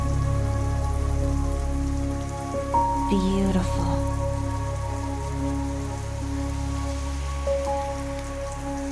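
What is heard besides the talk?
heavy rain downpour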